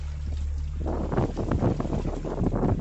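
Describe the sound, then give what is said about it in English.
A French sailboat pushes through choppy water off the coast of Portugal on a bright, windy late-summer day while pursued by killer whales, wind buffeting the microphone, splashing and rushing water building after a quieter start, continuous. “It's a bright and windy day in late summer, just off the coast of Portugal, and a French sailboat is being pursued by killer whales.”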